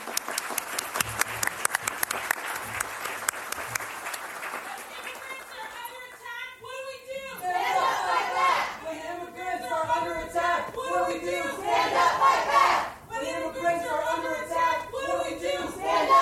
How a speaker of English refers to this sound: According to Fox News, before his remarks even began, the audience was shouting. Here's some audio from the event via C-SPAN.